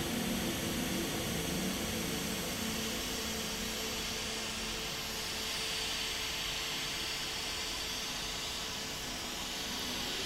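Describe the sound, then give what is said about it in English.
Steady white noise fills the whole stretch, a dense, even hiss spanning low rumble to bright highs with no breaks, no voices and no change in loudness. “The white noise has come.”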